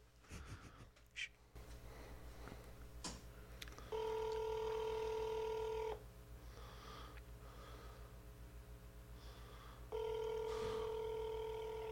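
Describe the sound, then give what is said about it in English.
After a toll-free number is dialed on a Saturday, a phone line rings out with two steady, buzzy ringback tones, each lasting about two seconds with a long pause between, preceded by a few faint clicks and breaths. No one speaks. “Oh, now it's ringing.”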